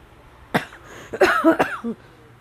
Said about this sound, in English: So I wake them up and be coughing like I do, but I don't.